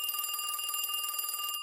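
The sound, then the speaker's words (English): A telephone bell rings loud in one continuous, rapidly trilling burst that cuts off abruptly near the end, an incoming call asking for the priest. There are no voices or other sounds. “Like half an hour later, the phone rings.”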